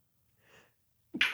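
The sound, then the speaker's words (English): A single sneeze: a soft breathy intake builds up, then a sudden loud, sharp burst of air explodes at the end. It is unaccompanied by talking. “Bless you. I know you're also using it.”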